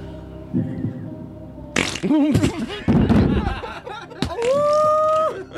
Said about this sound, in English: So we're going to play some more farts. Play. Now imagine maybe in this scene you're in a bathroom.